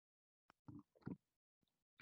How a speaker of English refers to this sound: Let me take a sip real quick as we're rounding third base here.